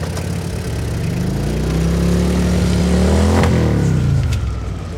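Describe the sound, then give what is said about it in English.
A loud motorcycle engine revs and accelerates, its pitch climbing steadily before easing down as it pulls away, with no one speaking. “I get on my motorcycle and lead Draeger out from this area.”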